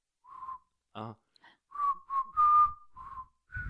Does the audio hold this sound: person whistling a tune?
yes